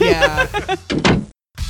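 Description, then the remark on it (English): A door slams shut with a heavy thud that cuts off into brief silence, preceded by a moment of tonal, voice-like sound. “Well, yeah, go look up door slamming sound effect.”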